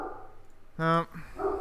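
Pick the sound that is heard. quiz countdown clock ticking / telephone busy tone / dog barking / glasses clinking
dog barking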